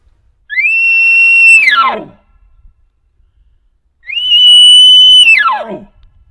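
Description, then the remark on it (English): Two short, loud elk bugle screams blown on a reed call with extra air pressure, each a high sustained whistle that breaks into a harsh falling growl, separated by a brief pause. “One of those short, loud screams. You can even inflect your voice at the end a little bit more just to make it sound like you're mad and you want to fight.”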